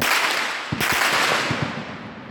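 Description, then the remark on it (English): Gunshots ring out in two quick bursts of sharp cracks, a few shots each, as a family evacuating their home walks carrying white flags, set against a constant rushing background noise outdoors with no talking. “As they walk, gunshots can be heard.”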